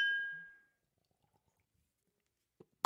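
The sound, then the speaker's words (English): Glasses clink together in a toast, a bright glassy ring fading out over about half a second, followed by near silence and a couple of brief soft knocks near the end. “Cheers, man. Cheers.”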